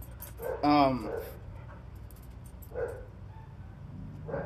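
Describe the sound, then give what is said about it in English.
A dog lets out one short, loud, whining bark that slides downward in pitch, followed by softer, faint whimpers a couple of seconds later. “More death dogs. All the death dogs.”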